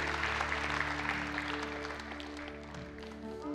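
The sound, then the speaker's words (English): Steady, dense audience applause at a church service that holds at an even level for a few seconds, with a sustained low musical chord humming underneath the clapping. “You're in this room today in the midst of applause.”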